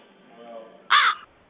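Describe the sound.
A person imitates a crow with one loud, harsh, nasal caw lasting about a third of a second, preceded by a faint low murmur and followed by quiet.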